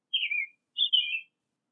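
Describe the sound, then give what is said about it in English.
Two quick, high-pitched bird chirps, each a short warbling tweet about half a second long, separated by a brief pause, clear with no other sounds around them. “He morphed into a bird to fly,”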